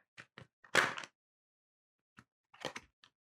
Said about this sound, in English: This is great for the listening audience. I know, a little ASMR for you. Some ASMR. Just shuffling cards now.